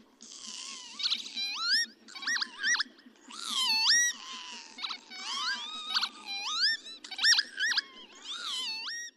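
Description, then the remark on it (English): Lapwing calls: a series of squeaky, sharply rising 'pee-wit' notes in quick, uneven bursts, fairly loud and high-pitched, over a faint low hiss, with no one talking. “Peewit, wit, wheeze, wit.”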